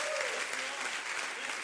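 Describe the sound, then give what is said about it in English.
A church audience claps their hands in a dense, steady wash of applause during a service, answering a call to clap and rejoice in the Lord, many overlapping claps blending into a continuous bright patter with a faint voice underneath. “Clap your hands and say, let's go to heaven together.”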